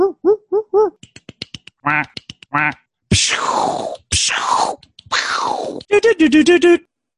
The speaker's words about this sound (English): Duck Hunt. Yeah, it's fucking Duck Hunt. Of course it is. With the gun? I freaking love that one, the zapper, man.